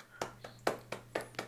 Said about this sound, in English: And why are you clapping?